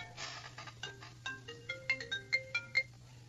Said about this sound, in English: Sorry about that. I forgot to turn my cell phone off. That's probably Joe Biden or someone calling.